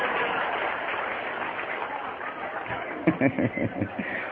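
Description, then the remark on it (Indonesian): An audience applauds for Indonesia in a dense, steady wash of clapping for about three seconds, then it fades under a man who starts speaking. “Tepuk tangan untuk Indonesia.”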